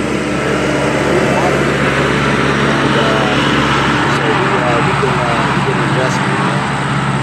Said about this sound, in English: Sorry, y'all, it's a boat going by. Yeah, exactly. Yeah, that was a big ass tugboat diesel going by, you know. But, yeah, had four barges with it.